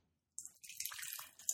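A 14.2% bourbon-barrel-aged ale with peach, apricot, cinnamon and vanilla pours steadily into a glass with a soft, fizzy hiss and small splashing gurgles, starting after a brief silence. Fairly quiet, with no voices.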